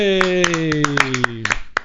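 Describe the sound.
A small scattering of sharp, uneven hand claps, about ten in under two seconds, a round of applause for a documentary maker, over a steady, slowly falling voiced tone like a held cheer.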